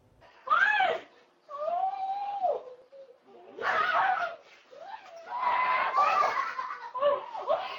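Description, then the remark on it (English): A woman in New York screams and wails in several loud bursts with brief pauses between them as she is beaten and choked by her husband, her voice high, strained and wavering throughout. “screaming as she is being beaten and choked by her husband, according to reports.”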